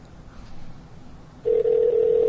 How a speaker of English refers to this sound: Wow. It was ringing and then it tells me call has been lost. Let's try this one more time.